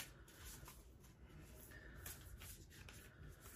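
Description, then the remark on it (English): Soft, continuous papery shuffling of oracle cards, with brushing and flicking textures, steady and unhurried with no talking. “And again, just shuffling. That's kind of my way that I like to do it.”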